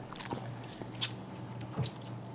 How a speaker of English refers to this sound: I'm honestly just gonna squeeze these tomatoes right on top of the pizza. Make it pop right on top, man. And you can hear it.